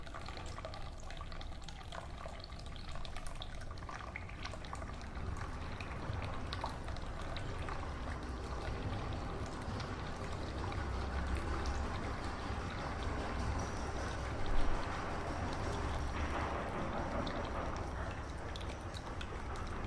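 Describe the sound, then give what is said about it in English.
Water pours and trickles steadily out of the drain of a laser device being emptied before transport, a continuous splashing flow with faint drips and no talking. “Once again, if you're wanting to transport the device elsewhere, it's highly recommended that you get all the water out before transport.”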